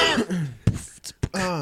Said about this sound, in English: Gotta cough for a minute. Gotta cough all the phlegm out.